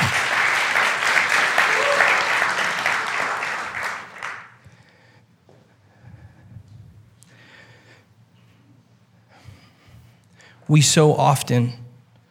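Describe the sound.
A loud burst of dense audience applause fills the first four seconds, then fades into a quiet room with faint rustling before a voice begins speaking near the end.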